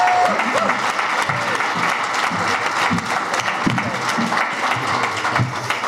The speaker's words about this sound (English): And an exciting last second addition to the panel, Emily Swallow. Clap those hands.